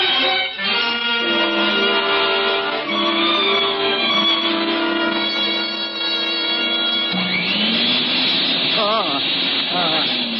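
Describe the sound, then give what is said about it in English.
A vacuum cleaner runs loudly and continuously, cleaning butts off the floor, its motor giving a steady hissing roar with a high whine that shifts and rises in pitch partway through. “Just running the vacuum.”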